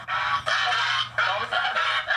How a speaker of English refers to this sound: That's Bobby. That is Bobby screaming at me, wanting me to give him attention. But no, that is our goose.